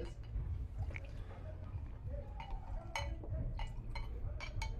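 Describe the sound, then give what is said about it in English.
Wine pours steadily while wine glasses clink sharply several times in a toast, the bright taps scattered over the second half against a dense, gurgling wash. “I need some more wine for this though.”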